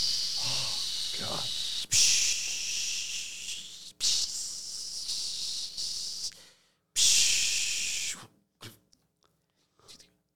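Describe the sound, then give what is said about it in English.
Loud, bright sizzling hiss in several long bursts separated by brief pauses, like meat searing on a hot barbecue grill, trailing off into a few faint crackles at the end. “Sizzle.”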